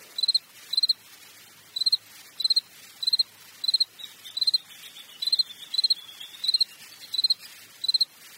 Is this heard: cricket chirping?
yes